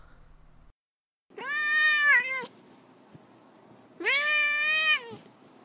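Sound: cat meowing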